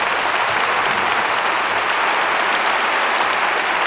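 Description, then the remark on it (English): Steady applause from a crowd, a dense, even wash of clapping at a consistent loudness that carries on without a break for the whole four seconds, with no voices standing out. “Let's do posh applause.”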